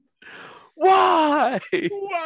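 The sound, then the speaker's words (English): A person's voice imitates an anguished cry of someone screaming up into the sky in the distance, in the Barrens: a breathy gasp, then a loud, strained, wavering wail that breaks off and trails into a shorter groaning moan, alone. “In the distance, in the Barrens, there's an anguish. What have I done? Just screaming up into the sky.”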